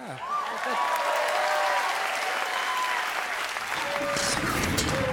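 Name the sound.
comedy club audience applause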